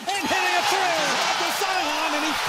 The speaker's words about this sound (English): I like how it's not just cheering. It's clearly everyone going, oh!